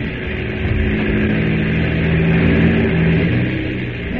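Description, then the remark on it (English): A seaplane engine drones steadily as the plane taxis on water back to midstream, a loud, continuous rumbling hum with a low pitched tone that swells slightly in the middle and eases off toward the end. “Yes, he's taxiing back to midstream.”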